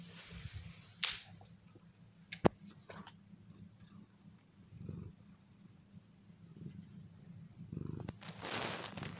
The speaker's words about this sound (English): Hold on, I need to pet my cat.